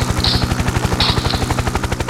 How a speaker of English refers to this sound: I don't know why Todd's playing a helicopter sound.